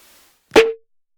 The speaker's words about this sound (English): You use white noise to, and I put a little chorus on the white noise. That layered with the piano and the distortion, just it, white noise is just like all the sound spectrum just together and just kind of fills up the whole palette.